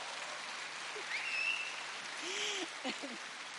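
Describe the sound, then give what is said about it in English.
A crowd applauding with steady, dense clapping that holds at an even level throughout, faint murmuring voices and brief tonal sounds rising from beneath the applause. “And if you do nothing else, but yes, pray, just applaud that girl. Applaud that girl.”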